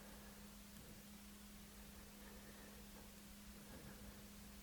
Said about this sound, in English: You know, there's the hum, which probably is from the furnace.